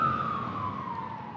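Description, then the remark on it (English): A fire truck siren wails steadily, its pitch sliding gradually lower as it drives by, with a low rumble of traffic underneath and no voices. “Two ambulances. Oh, fire truck.”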